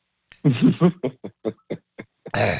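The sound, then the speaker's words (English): A muffled fit of stifled coughing: one longer throaty burst followed by a quick series of short, suppressed coughs, ending in a louder, breathy exhale. “I'm going to kind of stifle that cough because I'm talking about it.”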